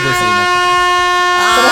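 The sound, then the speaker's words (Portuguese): A loud, sustained air horn buzzer blares for nearly two seconds, a steady harsh tone rich in overtones, played alone as a sound effect to signal that a speaker's time is up. “Cara, Fernando, desculpa, eu vou ter que soltar a buzina, velho.”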